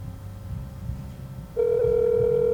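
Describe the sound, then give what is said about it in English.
A phone line on an outgoing call to a friend: after a moment of low background rumble, a loud, steady ringing tone starts and holds through the end. No one speaks. “Okay, we're going to make a phone call to our good friend”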